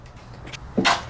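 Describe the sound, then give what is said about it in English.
A single short, stifled sneeze: a brief voiced catch followed by a sharp, hissy burst of breath, with no talking around it. “I just sneezed.”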